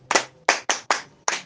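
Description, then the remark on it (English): An audience at a Bible lesson claps for themselves in five loud, crisp, unison claps, spaced a little unevenly over about a second and a half, with no talking. “Clap for yourself.”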